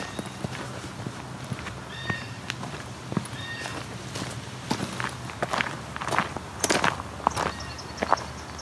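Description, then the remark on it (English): An eastern kingbird, flying high above a river catching flies, gives a series of sharp, high, sputtering chips and short buzzy notes, scattered irregularly over a steady hiss of background noise, with no one talking. “That's an eastern kingbird calling.”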